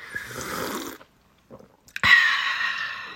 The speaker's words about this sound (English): She will definitely have an issue with the tea slurping. Okay, I'll slurp one last time. Yeah, I'm going to slurp as well. Okay. Okay. You ready? You slurp quite loudly. Let's see.